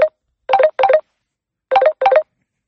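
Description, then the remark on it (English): A telephone rings loudly, two quick pairs of electronic trilling bursts separated by a short pause, with no voices; the call is from the speaker's sister. “I'm sorry that you just heard that phone ring.”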